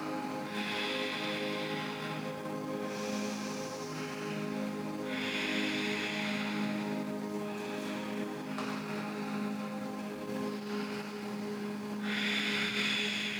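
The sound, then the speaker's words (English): Forceful, rhythmic breaths of a yoga breathing exercise repeat roughly every two seconds, each a strong hissing rush of air, loud over a steady droning tonal background. “Your breathing will keep you light, flexible, and soft.”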